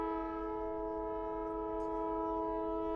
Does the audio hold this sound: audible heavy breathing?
no